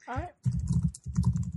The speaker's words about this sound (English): I'm typing. I apologize that I'm typing, but I'm getting something really important up on the computer machine that I have.